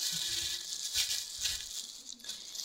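Crinkly plastic rustling with soft patters and bumps as a loosely rolled wet fomentation cloth is stuffed into a thin plastic grocery bag before microwaving, a steady hiss of crackle over a few dull thuds, no talking.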